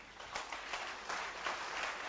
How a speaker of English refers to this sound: Wow. Oh, clap for Jesus.